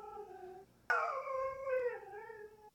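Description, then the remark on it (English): A dog named Mac lets out drawn-out whining, howl-like vocalizations because he wants treats, two wavering tonal cries back to back, fairly loud with no one speaking. “This is a Judgies listener submitted sound, and this is my dog making some funny noises because he wants some treats.”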